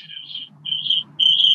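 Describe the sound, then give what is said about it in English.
Three shrill, cricket-like chirping bursts in a steady rhythm, each lasting under half a second with short pauses between, fairly loud over a faint low hum. “That sounds like a cricket.”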